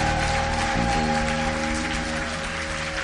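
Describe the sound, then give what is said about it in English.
An audience claps in a dense, steady wash of applause that holds for about three seconds, with sustained keyboard or organ notes sounding underneath. “Is that your best clap?”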